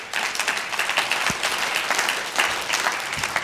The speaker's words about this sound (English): Come on, clap like you mean it or don't clap at all. There you go.